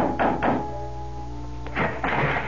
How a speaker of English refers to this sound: And dusk was beginning to fall when, exhausted, famished, and dirty from the road, I knocked on the door of the Adams house.